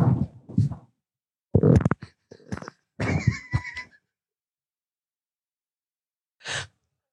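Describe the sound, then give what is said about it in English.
A series of loud, blurting, flatulent bursts warped by auto-tune into warbly, whinny-like tones, followed by a pause and one short breathy puff near the end. “I have a fart brewing.”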